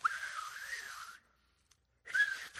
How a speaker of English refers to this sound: And then there's one that I never really fully developed, but it was the a different like way I did it. It was kind of a lisp whistle, which is.